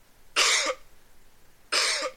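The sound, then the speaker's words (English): Two harsh, forceful coughs about a second apart, fairly loud, with nothing else around them. “I mean, some are so deeply paranoid that they cringe when they even hear a cough near them.”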